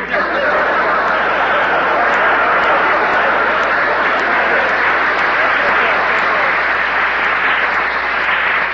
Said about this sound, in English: Please, there's two ways to take that applause, you know.